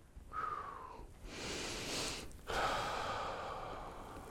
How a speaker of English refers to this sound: Guarantee you, that's the first time when you start to feel stress, start breathing. Consciously breathe. It'll help you relieve some of that stress.